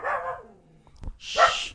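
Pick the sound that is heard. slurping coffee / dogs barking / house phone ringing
dogs barking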